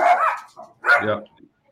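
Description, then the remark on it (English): A dog barks twice, two loud, sharp barks separated by a brief pause, with a faint yip trailing after the second. “I'm so sick of these dogs.”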